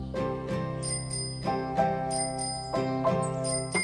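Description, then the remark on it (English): A bicycle bell rings repeatedly, its bright metallic chimes coming in quick pairs and lingering between strikes. No one speaks. “With a helmet on my shoes tied to my feet, I ring my bell.”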